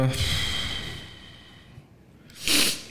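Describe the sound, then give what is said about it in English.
A sharp, close sniffle bursts out near the end, loud and breathy right against the mic, following a quieter stretch of nasal, snorty breathing at the start. “Fucking sniffling and shit all over the microphone.”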